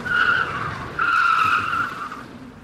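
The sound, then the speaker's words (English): Car tires screech in two sustained, high-pitched squeals, the second starting after a brief dip and trailing off, loud, with a rumbling vehicle underneath and no voices. “That means I start putting on the brakes.”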